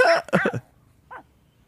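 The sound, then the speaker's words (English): A small Pomeranian dog barks sharply at a larger dog: a quick cluster of three or four high yaps, then a single softer yap after a short pause, with no talking. “Yeah, so this little pom is barking at, like... Is that, like, a Doberman or a German Shepherd?”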